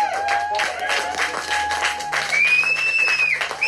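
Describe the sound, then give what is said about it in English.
Steady audience applause for a guest at the live show Off the Reels, with dense, fast clapping that holds at an even loudness for the whole stretch, joined by a high sustained whistle toward the end. “Round of applause for our guest”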